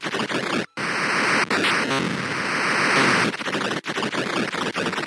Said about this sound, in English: And one of the things I remember most when playing this game is when you did lose a life, you were treated to a rather delightful looking static interference image.